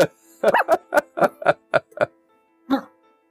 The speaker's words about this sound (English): Fire the barking cat. That's actually the sound she makes when she passes gas.